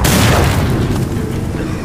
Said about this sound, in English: I pointed the grenade launcher and pulled the trigger. He caught the grenade with no problem until it exploded.